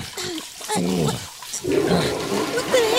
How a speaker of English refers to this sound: What the hell? The water's freezing all of a sudden. Who flushed the toilet?